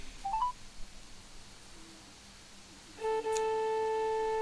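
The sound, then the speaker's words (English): A few quick dialing beeps, then after a pause a steady electronic UK telephone engaged tone comes on and holds clearly to the end, fairly loud, with no voices. “Is that engaged or what?”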